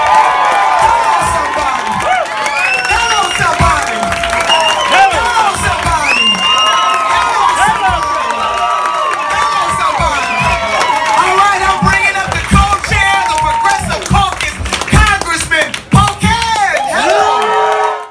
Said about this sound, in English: When Bernie Sanders pulled up in front in his Not Me, Us bus, the crowd started chanting wildly.